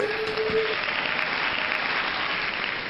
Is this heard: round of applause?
yes